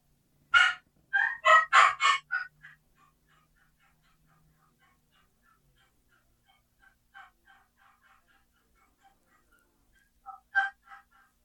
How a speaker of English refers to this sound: Here's an excited hen yelp. This is what you want to do when you get a hen fired up at you. This is what you kind of want to do.